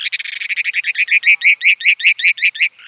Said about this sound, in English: You see, tourists from across the state and maybe beyond will gather there next month to see a rare bird, the mountain plover, and to hear its high-pitched trill.